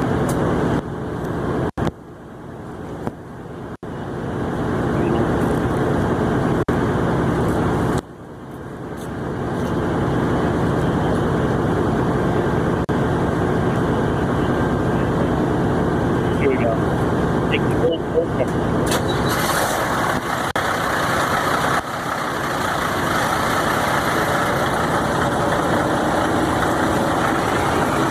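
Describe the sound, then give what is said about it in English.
A big rig truck engine starts up, with a couple of brief stutters before settling into a loud, steady, rumbling idle that carries on to the end. “Oh, here's a startup.”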